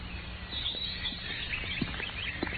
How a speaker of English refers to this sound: The music of the birds and the fresh breath of the spring.